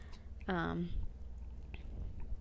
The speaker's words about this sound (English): Hopefully you guys can't hear my dog chewing on her toy in the background.